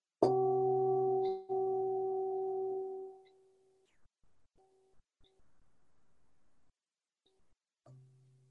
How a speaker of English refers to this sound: But the other way it can be played is with a mallet, and it's more of a gong sound.